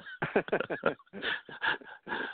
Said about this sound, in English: So, oh, barking. Wow. Yeah, that's all right. Just ignore that.